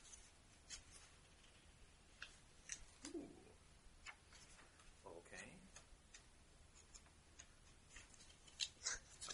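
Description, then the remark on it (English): A sheet of paper is handled, crinkling and rustling in short, uneven bursts with scattered sharp crackles, alongside quiet background voices. “Piece of paper.”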